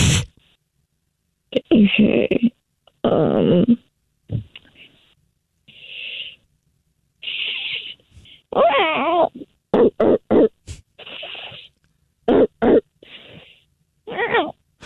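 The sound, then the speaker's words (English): During a phone prank, a voice imitates a vicious dog and cat fight: bursts of growling, snarling, yowling and hissing in irregular loud spurts with short silent gaps, wavering between low rumbles and high screeches. “Oh boy, that was a vicious dog and cat fight.”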